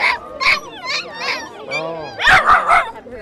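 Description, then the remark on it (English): Small white poodle mix dogs, Popeye and Olivia, bark in a rapid series of high-pitched yips, with a brief whiny yelp midway before a final flurry of sharp barks, at a clinic where they were brought for checkups. “brought their little white poodle mixes Popeye and Olivia for checkups.”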